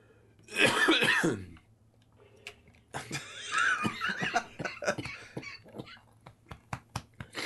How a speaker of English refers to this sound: I like coughed up a little bit of mucus and it went to the back of my throat, and now it's like, oh gosh, don't you wish you were here, everyone?